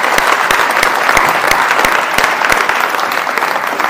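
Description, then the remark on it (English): A crowd claps steadily, the dense patter of many hands filling the space at a consistent loud level with no voices on top, as sustained audience applause. “Let's give these guys a round of applause.”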